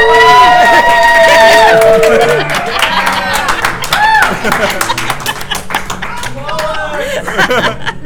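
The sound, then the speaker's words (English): A live audience in Salt Lake City claps steadily and cheers, with loud whoops and shouting voices rising over dense applause at first, then the cheering thins while the clapping carries on. “hey, y'all are supposed to cheer like you're enthusiastic.”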